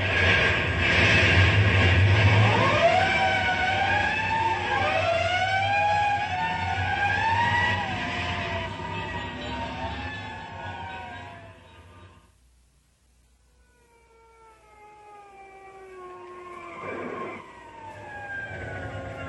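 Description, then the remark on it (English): A fire engine siren, responding to a box alarm at Blue North Street, wails in rising and falling sweeps over a low engine rumble, loud at first, then cuts out briefly before returning fainter as it winds up again. “That's a box alarm at Blue North Street.”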